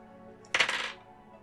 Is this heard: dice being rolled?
yes